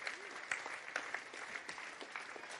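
A round of applause from a crowd welcoming the school staff as they come forward: steady, dense clapping that holds at an even level throughout, with scattered sharper claps standing out and no speech.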